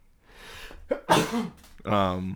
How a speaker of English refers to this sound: I'm about to sneeze.